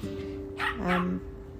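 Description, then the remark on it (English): A fluffy dog, quite large for a small dog, gives two quick barks in the background over a steady low hum with no one talking, outdoors in sunshine at lunchtime. “The warmth of the sun is warming my face a little bit as the dog barks away in the background.”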